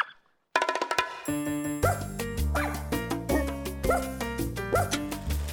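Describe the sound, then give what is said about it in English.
An English toy spaniel barks in short, repeated yaps, roughly one per second, fairly loud over steady background music. “Yes, including the storied Black Dog, where the relentless hounds, giant mastiffs, were an English toy spaniel.”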